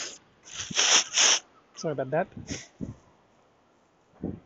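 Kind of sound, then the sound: human body sound, blowing nose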